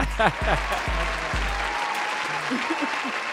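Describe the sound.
Steady, dense clapping for a show's intro fills the whole stretch, with a low hum underneath at first and a few voices calling out over the applause.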